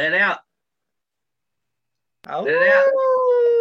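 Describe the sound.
A person imitates a wolf howl: a short yelping burst, a pause of silence, then a longer rising howl that settles into a thin, sustained wavering tone.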